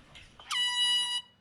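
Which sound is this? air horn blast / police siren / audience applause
air horn blast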